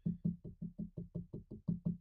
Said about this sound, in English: Oh boy, as the weather's really, oh my God, I got to knock on wood.